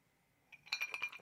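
Drinking glasses clink together in a toast, a quick cluster of bright, ringing taps, with no voices during the contact.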